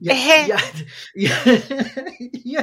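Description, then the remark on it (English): A person makes a few small, tickly throat coughs in quick succession, fairly loud, mixed with voiced throaty sounds, imitating a light cough caused by a tickle in the back of the throat. “if you have that, you know, just the tickle in the back of your throat, and that one makes you cough. That was called a kiffle.”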